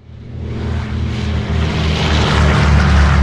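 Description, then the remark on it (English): Brunhilde's propeller airplane revs up for takeoff, its steady engine drone loud, building gradually in strength with a throbbing low rumble and no voices. “The platform rises to the surface just in time for them to see Brunhilde's plane take off.”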